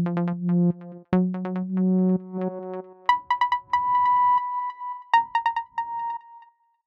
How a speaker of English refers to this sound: Sometime around 11 p.m. that night, Danny's phone rang. It was Kevin.